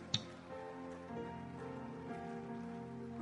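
A crowd applauds in a steady, dense patter of many hands clapping at once, holding an even loudness throughout, with a sharp crack at the start and a faint tonal hum underneath.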